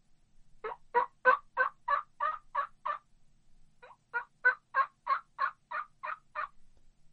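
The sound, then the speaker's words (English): A mouth call imitates a turkey's yelp in two runs of evenly spaced, raspy notes, about eight then seven, with a short pause between. The notes are loud and clear with no talking. “I'm just going to do a regular yelp.”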